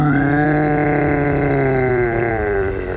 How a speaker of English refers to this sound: The ancient creature roars.